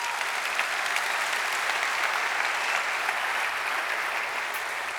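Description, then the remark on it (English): An audience applauds steadily in praise of the Lord for the full stretch, a dense, even wash of many hands clapping at once, sustained and fairly loud with no pauses or voices standing out. “Come on, give the Lord a clap, man, please.”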